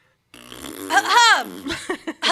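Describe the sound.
A buzzy, drawn-out mouth fart noise made by a voice, fairly loud, followed near the end by a couple of short, sharp cough-like bursts meant to cover the fart noise.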